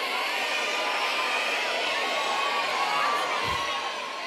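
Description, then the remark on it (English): A live audience shouts out suggestions all at once, a dense, steady wall of overlapping voices calling and yelling from the crowd, loud and continuous for the whole stretch with no single voice standing out. “Okay, crowd, give me a bit of help here, will you?”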